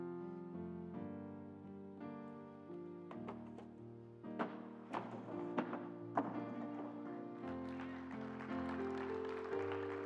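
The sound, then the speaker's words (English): A run of sharp clacks and taps from toppling dominoes, loudest in the middle stretch, over a steady bed of sustained instrumental music. “You know, it takes, scientists have discovered this, it takes 0.024 microjoules of energy to knock over a domino.”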